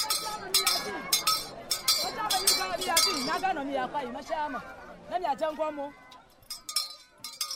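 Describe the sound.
A modest handheld bell, rung by a community leader in Galosota, Anglo district, Lower Volta area, to call flood-displaced villagers, rings in quick, uneven bursts of bright metallic clangs over a crowd of chattering voices, thinning to a few scattered strikes as the talk fades near the end.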